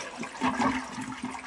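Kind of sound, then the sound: household object, toilet flushing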